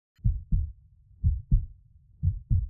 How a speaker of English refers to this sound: And it makes this kind of ba-bum, ba-bum, ba-bum, ba-bum, like a heartbeat.